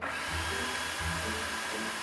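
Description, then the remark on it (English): A food processor runs in a school kitchen as a student is shown how to operate it, with a steady, loud motor whir and a faint high whine, holding an even level throughout with a slight low surge partway through; no one speaks. “who teaches home management, is showing another student how to operate a food processor.”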